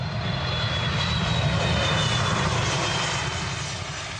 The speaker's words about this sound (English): Touching down in Beijing on an Air Force jet, the Prime Minister John Key arrived in the Chinese capital with two of his ministers and a high-level business and investment delegation of more than 40 people.